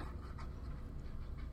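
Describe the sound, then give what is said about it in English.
An anti-anxiety service dog whimpers and pants with a few short, soft barks mixed in, a steady anxious stream of sound with no one talking. “He's an anti-anxiety dog.”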